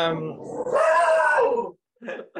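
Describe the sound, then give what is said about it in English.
A dog lets out a low growl that rises into a long, high whimpering whine, followed by a short yelp after a brief pause. “Oh, my dog's having a moment.”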